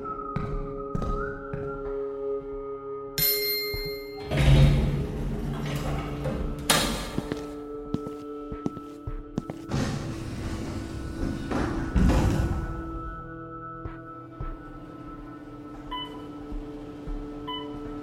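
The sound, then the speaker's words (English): An elevator on its way to the third floor hums steadily, then jolts to a stop with a few heavy thuds and clunks before its doors slide open, the droning tone lingering afterward. “I was about to the third floor when the elevator stopped and the doors opened.”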